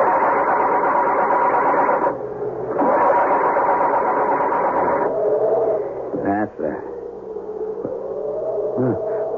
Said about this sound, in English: The car has crashed into a tree. Muttering a silent, heartfelt prayer, he tries to start it.